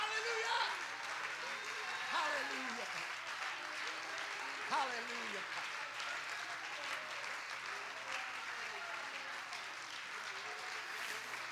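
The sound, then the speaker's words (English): An audience claps steadily for the full stretch as a hand clap of praise during a church sermon, a dense, even wash of many hands, with a few voices calling out and cheering over the applause. “Before we get started, can we just give him a hand clap of praise once again?”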